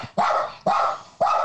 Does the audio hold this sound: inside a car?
no